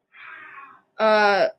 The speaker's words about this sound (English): What the heck? That was my dad. He just screamed if you heard that.